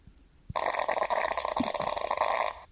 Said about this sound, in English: Fart number one. What wrestler would fart like that?